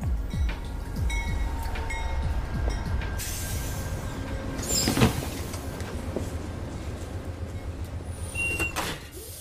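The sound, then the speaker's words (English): A train rumbles steadily along the rails, with a deep continuous low-end roar, rhythmic clatter, and occasional brief high metallic squeals and hisses; no one speaks. “If you're a snitch in Underworld City, a purveyor of information, you spend half your time dropping eaves and the other half riding the train.”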